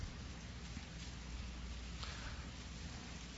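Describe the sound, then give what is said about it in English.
Many Bible pages turning at once, blending into a steady, soft papery rustle that sounds almost like rain, constant in level for a few seconds with no voices. “By the way, no better sound than hearing Bible pages turn.”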